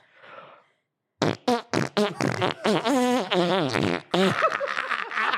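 A loud run of pitched farts that trace out a recognisable song melody, starting with short rhythmic bursts before stretching into longer, wavering notes, preceded by a brief soft rustle.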